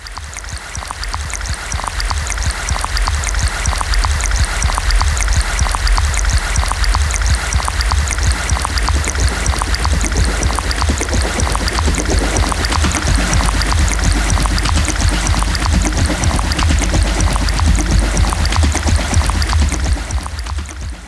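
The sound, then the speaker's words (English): Water flows and trickles steadily from a spring, a continuous babble of splashing and dripping that holds an even level throughout, with no voices. “It feels like the water is there, but it's being pumped, like my heart.”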